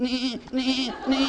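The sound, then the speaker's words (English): A person imitates a sheep as a sound effect for a story, with three quick, wavering 'baa' bleats in close succession, loud, with no other sounds around them. “one afternoon, David was on the hillside watching a flock of his father's sheep.”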